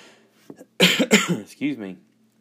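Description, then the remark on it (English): A couple of sharp coughs burst out in quick succession, followed by a brief throat-clearing sound and a short voiced noise, loud. “I don't want to cough in your ears. I know I just did.”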